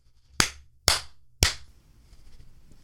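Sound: hand clap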